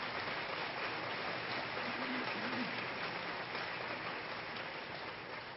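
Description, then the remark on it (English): A crowd applauds steadily, giving another round of applause to a student orchestra of 7th grade and junior high students, a dense, even wash of many hands clapping at once that holds a constant level for several seconds without pause or voices. “And I just want you to give them another round of applause for their efforts.”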